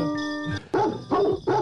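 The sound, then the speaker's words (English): A steady pitched musical tone gives way to three evenly spaced, tuneful dog barks, loud, like dogs barking out the notes of the Christmas carol Deck the Halls. “A dog can't ring in the deck the halls.”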